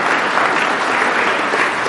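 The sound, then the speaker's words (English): Steady, dense applause from a crowd for the people who took part in a game, many hands clapping at once in a loud, continuous wash with no pauses, holding even throughout. “So for taking part, give them a round of applause.”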